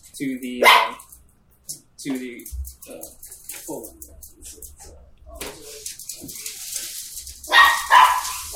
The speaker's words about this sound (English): Oh, excuse me, my dog.